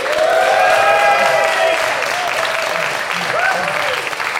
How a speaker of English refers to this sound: And here with a fantastic audience, let's have a big round of applause please from all of our lovely people.